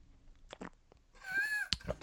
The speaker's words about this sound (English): always takes some loud sips.